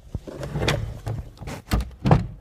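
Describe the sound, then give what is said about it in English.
A closet door is handled in a short sequence: a sharp knock, a scraping, rattling slide, then two heavier thuds as it shuts, with no voices. “That's the door to the closet where, for the past however many months, I've been recording.”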